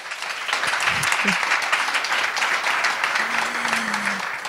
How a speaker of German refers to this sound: Nochmal einen ganz, ganz großen Applaus an die Runde.